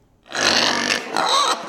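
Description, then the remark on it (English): Pigs on a research farm, raised for organ transplants in humans, grunt and snort in a loud, harsh burst lasting over a second, then two shorter rough grunts follow quickly after, with no one speaking. “Sanjay Gupta got some incredible rare access to a research farm that is raising pigs for the purpose of organ transplants in humans.”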